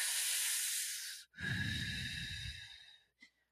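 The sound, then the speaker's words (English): A hissing inhale drawn through pursed lips, as if through a straw, a brief pause, then a longer, breathier exhale with a soft rumble, ending in a faint click. No one speaks. “And then the third technique is pursed lip breathing. And so that is just pursing your lips as if you're inhaling and exhaling through a straw.”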